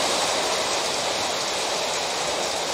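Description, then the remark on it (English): Heavy rain, recorded on video, pours down in a dense, steady hiss that stays loud and unchanging throughout, with no voices or other distinct sounds breaking through. “So I have a video of the rain and a picture of the road flooded out.”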